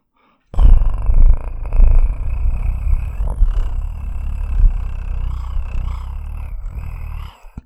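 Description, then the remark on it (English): A person imitates a cat's purr with a continuous low, rumbling throat vibration, fairly loud, sustained for about seven seconds with slight pulsing swells and no talking. “Okay, one more time at the purring.”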